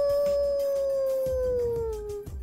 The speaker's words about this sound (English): What was that? It's the middle of the day. What are wolves and owls doing awake at a time like this? It's very strange.